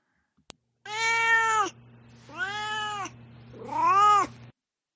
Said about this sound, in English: Duarte's been chiming in, but it is time for Duarte's corner, and we'll just let him get the rest of this out of his system now and just see what my cat Duarte has to say about this book.